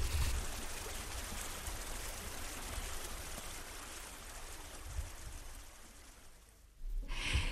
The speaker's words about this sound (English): But the river, as you can hear, is still flowing